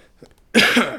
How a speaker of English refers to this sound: Get my cough, get my voice ready for you guys.